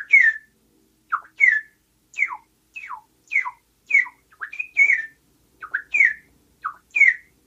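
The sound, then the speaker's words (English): A person whistles a lively imitation of birdsong over the phone: a quick series of short, sliding chirps and warbles repeated in bursts, clear with no talking. “Yeah, I wonder if it will sound good with the over the phone, but I could try to make some bird sounds that I love hearing in the morning.”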